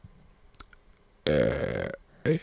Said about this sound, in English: That was a good burp. That was a good burp. I thought that one was worse. No, that one's way better.